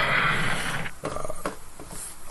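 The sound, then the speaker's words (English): Horses whinny loudly, a brief rough burst followed by a wavering, high neigh that trails off over a couple of seconds. “And there's the horses again.”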